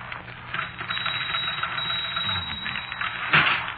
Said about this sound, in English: I tell you, it isn't a gag. That typewriter's haunted.